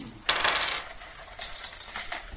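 A skill die clatters and rattles across a tabletop, a sharp initial clack followed by a few lighter tumbling taps that fade out, with no talking; it rolls a one.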